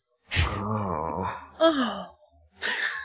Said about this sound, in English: Yeah, that's a weird moan.